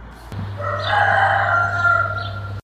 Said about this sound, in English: Thanks for joining me, and thanks to the sound of that pompous, marginally useful bird, the rooster.